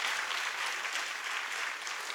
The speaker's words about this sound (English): If you trust God this morning, will you just stand with me and let's give him a great hand clap of praise. Friends, would stand with me, give him a great hand clap of praise.